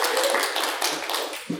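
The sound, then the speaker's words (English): A crowd applauds steadily, a dense wash of many hands clapping at once that stays loud and even for the whole moment, with no one speaking over it. “Give a round of applause for this.”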